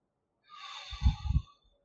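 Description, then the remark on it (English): A single deep breath drawn in through the nose, an airy sniffing rush lasting about a second, with a slight snorting rumble near its end, heard alone. “So breathe in through your nose.”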